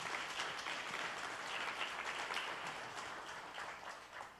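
A crowd claps steadily for several seconds, a dense, even patter of many hands that holds strong and then eases slightly toward the end, with no voices over it.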